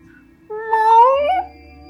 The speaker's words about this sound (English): I don't know if I like it. I don't know if I like these cats meowing at me like this. I know I don't like it.